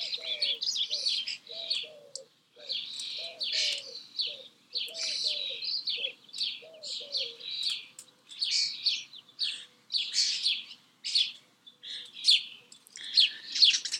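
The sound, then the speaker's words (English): Busy sparrow chirping fills the air nonstop while a dove repeats soft, low cooing notes underneath for the first half, outdoors in a garden, with no voices. “A lot of doves around here. It's like all of a sudden, it's like become a sanctuary for doves.”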